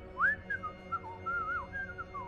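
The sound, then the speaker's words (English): A security guard twirling a baton whistles to himself, a wandering little tune, a string of sliding, clear notes rising and falling, fairly soft, with only a faint low hum behind it. “So you guys get to the bottom of the stairwell, peek out the door, and you do see a security guard twirling a baton, whistling to himself.”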